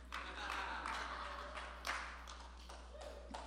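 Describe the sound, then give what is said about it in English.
An audience claps steadily throughout, a dense crackle of many hands with a few louder individual claps standing out, fairly soft overall and with no talking over it. “Keep clapping and I'll get another drink.”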